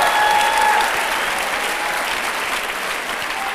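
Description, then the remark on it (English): An audience claps steadily for a few seconds, a dense, even wash of many hands that starts loudest and eases slightly, with a faint high tone in the first moments. “Because otherwise, I'm just going to ask that one person who clapped for me to stay.”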